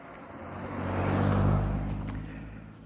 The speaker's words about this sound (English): Okay, so I'm gonna let this car pass.